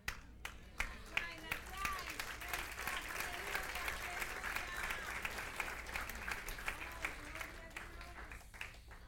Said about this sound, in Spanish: Gracias a Dios por el aplauso que me dieron.